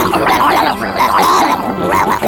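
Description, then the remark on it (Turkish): A vicious rabid dog growls and snarls continuously, loud, with harsh rising bursts that edge into barks, filling the whole moment with no voices. “Bir gün 14 yerinden kuduz bir köpek tarafından ısırılmış Joseph Meister adında bir çocuk getirdiler”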